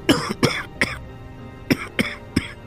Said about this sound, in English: Yeah, just a little cough. Been bothering me all day.